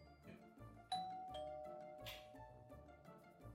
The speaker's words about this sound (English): Doorbell. Oh, I'll get it. I'll get it. Let me get it. Hey, Northside Delivery.